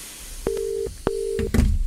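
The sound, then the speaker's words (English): Two long, steady telephone call tones sound in a row, each beginning with a click, as a call to Dr. Mighty rings out unanswered, followed by a burst of rustling noise. “Please answer the phone, Dr.”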